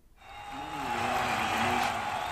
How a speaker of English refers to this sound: We've got a crowd cheering. That crowd is not cheering for Joe Biden. That is still the crowd from earlier cheering that we got 1,000 subscribers.